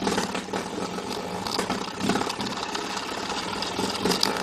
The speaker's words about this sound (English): Is it someone revving a motorbike engine? A cat playing with a door stopper? A baseball card in bicycle spokes? Or a walrus blowing a raspberry? The answer is a cat playing with a door stopper.